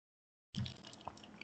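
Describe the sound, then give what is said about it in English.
A quick sip and gulp of water after a moment of silence, with a soft low swallow and faint wet clicks over a light background hiss. “Quick drink of the water, and we continue with the Gatorade.”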